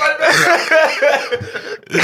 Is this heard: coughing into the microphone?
yes